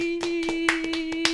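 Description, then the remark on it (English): About seven sharp hand claps in celebration, in a quick, slightly uneven rhythm, with no voices. A steady mid-pitched hum with a higher whine runs underneath throughout. “We could just clap.”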